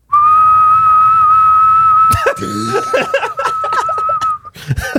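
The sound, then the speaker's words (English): A steady, loud whistle holds one unchanging note for about four seconds, imitated by a person, while laughter and chatter break out over its second half before it cuts off. “my oldest sister, had a weird habit where she would just whistle one note for like 15 seconds at a time.”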